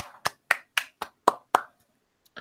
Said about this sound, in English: You said a round of applause. I did say a round of applause. I don't know why I went with golf clap, but it's probably because I have sleeping children. Upstairs.